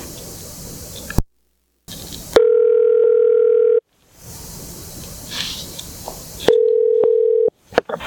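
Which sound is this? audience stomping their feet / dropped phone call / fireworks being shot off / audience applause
dropped phone call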